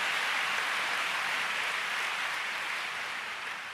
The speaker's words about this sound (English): Hallelujah. Come on, give the Lord a big clap. Let's give a big clap.